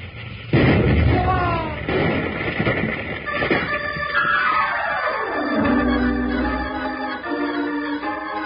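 A steam locomotive boiler explodes with heavy booming blasts and rumbling debris, followed by a long whistling tone that slides steadily downward in pitch and settles into a low, sustained hum.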